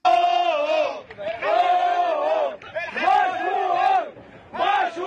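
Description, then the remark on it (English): A tugboat crew cheers and shouts in sustained, loud bursts after freeing the ship Ever Given from the Suez Canal, voices rising and falling together in jubilant cries separated by brief pauses. “Those are the joyous sounds of the tugboat bros who successfully dislodged the Ever Given, the ship, from the Suez Canal.”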